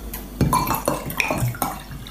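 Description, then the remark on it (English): Wine pours into a glass with bright splashing and gurgling, broken by a few clinks of glassware, as the glass is filled to a quarter, then a half, three quarters and full. Moderately loud, with no one speaking. “She's pouring it and then drinking.”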